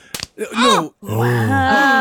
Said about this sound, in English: Open hand slaps her.